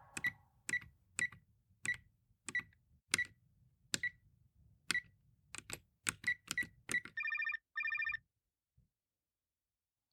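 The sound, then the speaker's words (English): A string of quick, sharp keypad presses as someone dials a mobile phone to call back a caller, followed by two short bursts of a buzzy electronic ringing tone. No one speaks. “Signal's very iffy round here. I'll have to call her back.”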